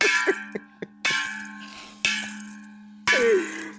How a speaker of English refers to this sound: This man was hitting the bell, man. This man real deal with it, man.